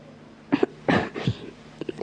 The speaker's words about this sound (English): How comfortable I am. That last fit of coughing has tired me a little.